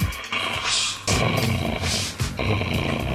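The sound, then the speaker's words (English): A female dog growls and snarls in rough, throaty bursts, loud, the rumbling rising and dipping in a few surges while playing tug-of-war with a ball, with no talking. “This was her doing that beautiful noise only a dog can”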